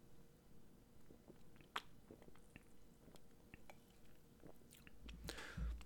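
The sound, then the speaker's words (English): Someone quietly sips a beer, with soft wet mouth clicks and swallowing, then a slightly louder shuffle or thud near the end. No one speaks. “I'm going to take a sip from my beer before I try to answer.”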